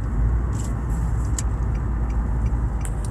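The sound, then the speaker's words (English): A car engine rumbles steadily as someone gets into their car, with a few brief, light jingles of keys scattered over the low hum. “I hop in my car feeling achieved, feeling satisfied with the job I've done for my boss, his boss, the owner.”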